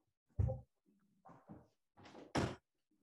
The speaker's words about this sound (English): here, I'm going to close one door.